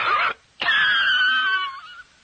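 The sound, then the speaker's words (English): A voice imitates a cigarette cough: one short harsh hack, a brief pause, then a long strained, wheezy rasp that slowly trails off. “Actually, a less powerful cigarette cough can rack your lungs pretty good. Like this.”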